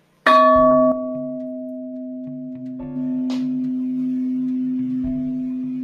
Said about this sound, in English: Okay, I'll let you gong us out.